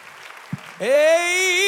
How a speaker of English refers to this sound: How many love what you feel in this room? Would you clap your hands again and shout to the Lord?